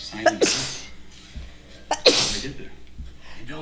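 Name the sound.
sneezing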